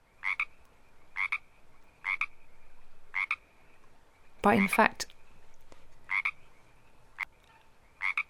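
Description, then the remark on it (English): A Pacific tree frog gives a steady series of two-part ribbit croaks, spaced about a second apart. A person briefly speaks over the calls partway through. “And this is the sound of frogs that we notice from many films.”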